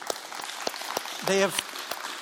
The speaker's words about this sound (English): I want to say thank you to each of those guys. We should give them a round of applause.